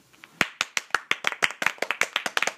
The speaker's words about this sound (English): Bravo! That was awesome. Whatever, I don't know why we're clapping. That was great.